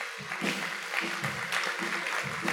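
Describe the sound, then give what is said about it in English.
A large church audience at C3 Powerhouse stands and claps steadily to welcome a pastor and give Jesus a clap offering, a dense, sustained wash of many hands with faint voices and cheers mixed in, loud throughout. “Come on, give Jesus a clap offering.”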